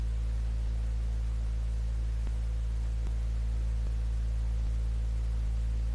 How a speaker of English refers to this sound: Hopefully it will be a little louder now. I think it's louder now. But there might be more static in the background as a result.